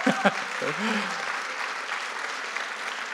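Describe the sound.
An audience bursts into cheering and sustained applause, dense clapping with a few whoops and shouted voices rising over it in the first second before settling into steady clapping.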